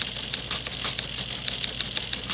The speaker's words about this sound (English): You want the typing sound? All right, we'll get that for you.